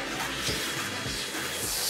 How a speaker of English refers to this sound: Can you just hit that on switch on the vacuum for me? Thanks, man.